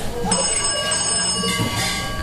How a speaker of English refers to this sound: The phone starts ringing, almost like it knew I was going to be there. Oh wow, it's ringing.